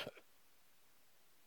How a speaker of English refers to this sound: Just excuse me while I cough. This is going to be loud. Excuse me a second.